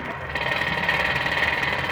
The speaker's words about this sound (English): A tremendous scaffold rose into the air. Men covered it like ants, working with pneumatic drills, shovels, wheelbarrows.